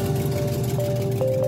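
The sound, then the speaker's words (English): A Prius car engine in Chicago running without its catalytic converter, sounding like a diesel engine: a loud, steady, rough drone with a deep hum and a higher tonal whine layered over it, unbroken and with no one speaking. “I go to start her car, and it just sounds terrible. Like a diesel engine or something.”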